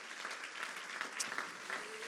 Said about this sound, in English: Won't you clap your hands unto the Lord one more time in the house?